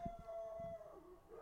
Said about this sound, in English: Oh, that dog. Coyotes? I don't know if you if the listeners can hear it or not, I don't know, but there's this dog in the neighbor's yard that barks all night long.